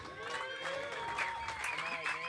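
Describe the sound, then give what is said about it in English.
Steady applause from a crowd welcoming panelists, including former world number one and big-wave rider Brad Gerlach, fills the whole clip, dense clapping mixed with overlapping voices and cheers, moderately loud and continuous without a break. “Big round of applause.”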